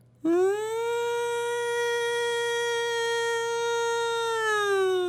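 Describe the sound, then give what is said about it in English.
A voice imitates a hometown lunch siren, which signalled the noon lunch break for the Cedar Mill, with one long, steady wail that swoops up at the start, holds a loud sustained pitch for several seconds, then wavers slightly near the end. “How do people differentiate the fire siren and the lunch siren? You want me to do the sirens from my hometown?”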